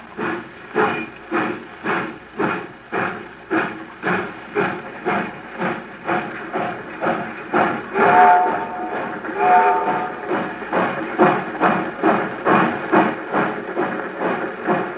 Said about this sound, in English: I get really sick when I think about the train pulling out.